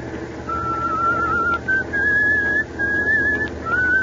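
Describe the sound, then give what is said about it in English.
A man driving in thick fog on Highway 9W in eastern Pennsylvania whistles a short, steady tune in clear sustained notes that step up and down in pitch, fairly loud, with no one speaking. “if you got a whistle, at least change that tune.”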